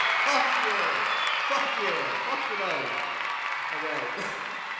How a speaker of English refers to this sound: As you can see, today's episode, we have a live studio audience. Round of applause.